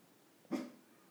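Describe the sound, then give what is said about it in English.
A dog lets out one short, sharp vocal sound, like a quick bark or yelp, followed by near silence with a faint click near the end. “My dog is about to do some dog shit.”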